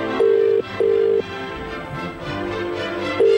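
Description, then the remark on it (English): A telephone call to King Edward VII Hospital goes through: a double burst of steady electronic ringing tone on the line, a long pause with faint background hiss, then the ringing starts again. No one speaks. “Let's give this hospital a call.”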